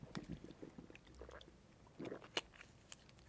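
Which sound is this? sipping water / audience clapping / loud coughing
sipping water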